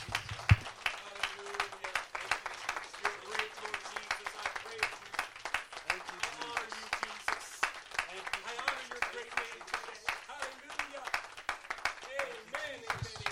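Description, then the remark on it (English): An audience at a church service claps hands unto the Lord steadily, a dense run of sharp, fairly loud claps that continues throughout, with voices talking and calling out underneath. “Why don't we clap our hands unto the Lord?”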